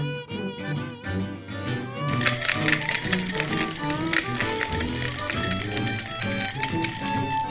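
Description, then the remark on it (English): After a brief tuneful lead-in, a cocktail shaker holding a gin fizz (gin, club soda, lemon juice, simple syrup and egg white) is shaken hard: ice rattles in a dense, rapid, continuous clatter that stays loud to the end, with music playing underneath. “I know you guys can't see this at home, but that was the most intense shaking I've ever seen.”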